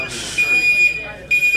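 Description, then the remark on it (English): A smoke alarm, set off by incense in a church, sounds a shrill, steady high-pitched tone throughout, with bursts of muffled voices and room noise around it. “And they were throwing incense everywhere, so it made the alarm go off.”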